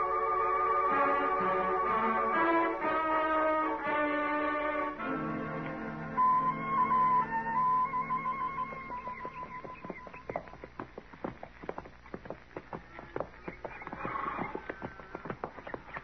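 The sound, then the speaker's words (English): A short swell of orchestral music fades into the steady clip-clop of horses' hooves as riders head out to a ranch, a brisk, rhythmic trotting beat that carries on alone with no voices. “I guess we better ride out to the ranch.”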